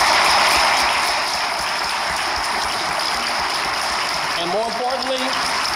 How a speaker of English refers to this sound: Well, hey, that's it for the moment. Let's give these warriors a round of applause.